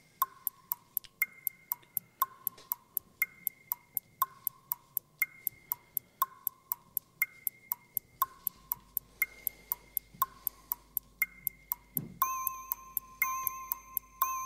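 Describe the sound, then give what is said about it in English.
A countdown clock for a letters word round ticks steadily and fairly loudly over a plodding, repeating tune that steps between two pitches, ending with a single bright bong near the end. No one speaks. “Start the clock.”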